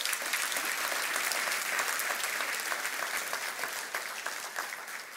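A crowd applauds steadily, a dense wash of clapping hands that holds at an even level for several seconds before easing off slightly at the end, with no one speaking.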